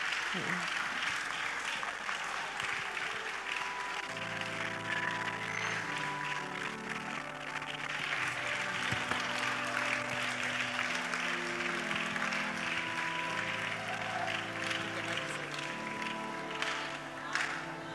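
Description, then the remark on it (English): An audience at a church service applauds steadily for the full length, a dense wash of clapping that never lets up, with sustained musical chords joining underneath after the first few seconds. “Please clap for him.”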